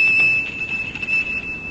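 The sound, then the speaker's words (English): A monastery gate bell, pulled by its bell cord at the ancient gate, rings out in one steady, high, sustained tone that holds unbroken for nearly two seconds over a low rumbling background, with no voices. “Then I rode the mule down the hill to the monastery and by its ancient gate pulled on the bell cord.”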